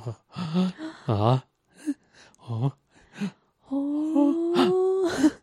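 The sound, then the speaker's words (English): A string of short, breathy anime-style grunts and gasps from a character's voice, loud, separated by brief pauses, ending in a longer strained vocal cry and a sharp intake of breath. “And then there's a whole bunch of, there's a whole bunch of anime grunts and gasps in this minute, right?”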